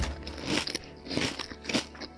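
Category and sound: food or drink, crunching wavy potato chips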